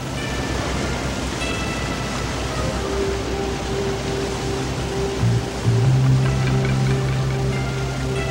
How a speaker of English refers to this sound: We enter into a raging waterfall.